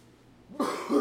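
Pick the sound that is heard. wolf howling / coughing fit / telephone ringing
coughing fit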